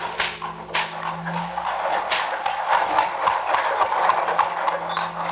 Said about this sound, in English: In the courtyard and down the rocky way, the roll of heavy wheels, the crack of whips. The wagons have gone.